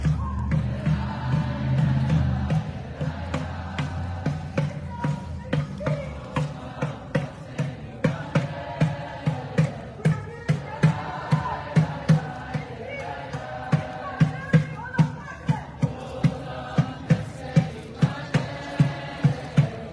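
A war drum pounds in a steady, evenly spaced rhythm, loud, over the clamor of a large protest crowd shouting and chanting throughout.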